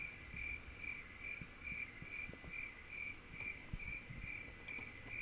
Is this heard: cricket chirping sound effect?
yes